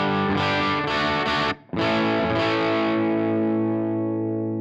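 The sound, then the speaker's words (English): Crunchy overdriven electric guitar, its volume knob turned up for more crunch, plays a few loud distorted chords with a brief cut, then one final chord rings out and slowly decays. No voices. “If I want more crunch, I could bring up the volume knob on the guitar.”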